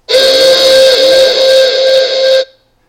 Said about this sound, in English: So, rather than the regular "What's up, Smokey," we're gonna give a air horn for this one.